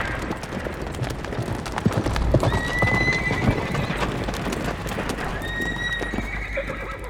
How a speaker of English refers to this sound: The tremor is coming into focus now. A tramping of feet. A thudding of hooves. A rolling and creaking of wheels, like chariots of the apocalypse.